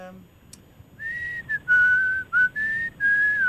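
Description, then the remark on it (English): Someone whistles the opening refrain of a rock song, a steady clear tone sliding between a few held notes in separate phrases, with no talking over it. “Can you whistle a bit of it for us?”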